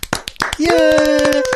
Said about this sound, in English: I'm clapping whether you guys do or not.